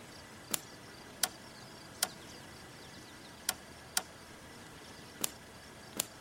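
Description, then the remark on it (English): A van clicks while being hot-wired, two black wires under the steering column tapped together: seven sharp, dry clicks at uneven intervals, some close together and others spaced apart, over a quiet background hiss with no talking. “I tapped them together. The car made a clicking sound.”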